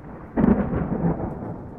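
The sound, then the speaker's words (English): A sudden roll of thunder breaks in after a brief hush and rumbles on steadily, loud and broad, with a wash of rain beneath it and no voices. “Sounds like it might rain around here.”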